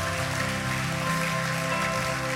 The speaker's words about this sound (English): Come on, keep clapping, church. Keep clapping.